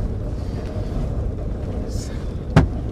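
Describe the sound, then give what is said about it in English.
A single sharp, loud crack as big hail strikes a car's body cuts through a steady low rumble of road and wind noise near the end. “What was that? Hail. Big hail.”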